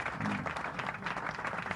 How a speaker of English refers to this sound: Another round of applause. Very short ones.